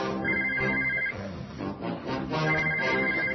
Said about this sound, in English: It's 3 p.m. The phone is ringing